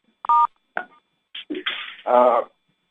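Two short telephone keypad tones beep in quick succession, followed by a stretch of harsh, crackly bursts and a brief distorted buzz, like a phone line connecting.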